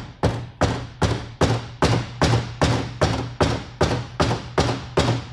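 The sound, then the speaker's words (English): A woman knocks on the door of a large house: a steady run of about a dozen firm knocks, evenly spaced and fairly quick, each a solid thud with no voices around it. “And she finds Noah, knocks on the door.”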